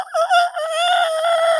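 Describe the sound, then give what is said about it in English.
A person imitates a rooster's crow with one loud, drawn-out call that starts with a short broken burst and then holds a steady, strained tone. It stands alone, with no talking. “And on a full moon, they crow all night long.”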